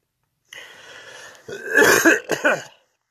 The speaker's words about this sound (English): All right, I'm coughing because I smoked a joint today.